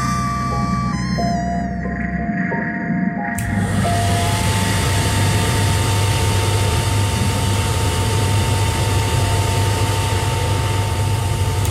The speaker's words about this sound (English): That was a hairdryer.